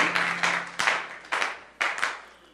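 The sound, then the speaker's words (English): An audience gives a clap offering, clapping together in broad, dense bursts, the applause swelling in uneven waves roughly every half second, bright and steady with no voices over it. “Well, with a clap offering, why don't you take your seats?”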